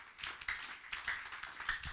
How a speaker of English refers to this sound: Give the Lord a clap of hands.